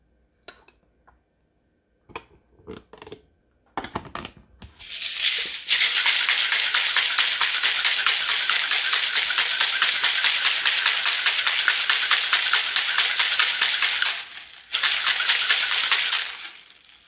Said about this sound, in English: Next comes the shaking part. Shake these ingredients up in your shaker glass.